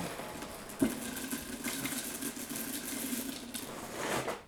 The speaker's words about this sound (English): I'm going to fill my bowl with some French toast crunch.